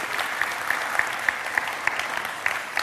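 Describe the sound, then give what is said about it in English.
A crowd at a morning church service claps steadily for the person who led worship, a dense wash of many hands with a few sharper individual claps standing out at a roughly regular pace, no voices heard. “I think he did a great job, so you can just give him a round of applause for that.”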